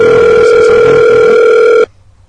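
A single loud, steady electronic ringback tone of a telephone call going out, holding for almost two seconds before cutting off abruptly into near silence.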